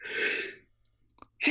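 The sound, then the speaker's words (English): One loud sneeze bursts out as a breathy blast lasting about half a second, then fades into near-silence with a few faint clicks before another sound begins right at the end. “Bless you.”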